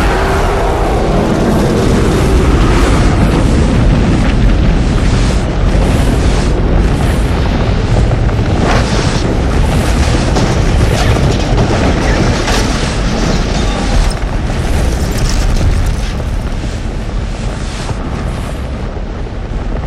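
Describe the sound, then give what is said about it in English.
An entire building block explodes, a huge explosion roaring loud for the whole stretch, a deep sustained rumble full of crackling, crashing debris that eases only slightly toward the end, with no voices. “For it was at that moment when the entire building block around us exploded.”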